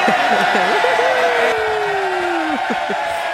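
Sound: applause sound effect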